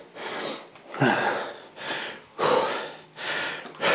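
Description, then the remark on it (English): Heavy, rapid breathing after finishing an interval exercise at a heart rate of 168, about six loud breaths in quick succession with harsh, airy inhales and exhales, and no talking. “Hopefully you've had a drink while I've been heavy breathing at you like a dirty phone call.”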